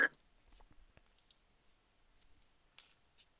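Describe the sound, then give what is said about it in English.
Dice rattle and clack on a tabletop during a game, landing on a 4; a few sharp clicks spread out with a louder clatter at the start and again near the end, no voices. “That was a 4 on the Eric dice.”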